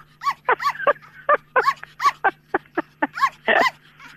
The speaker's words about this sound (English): That is the lonely sound of a dog who's lost its life partner.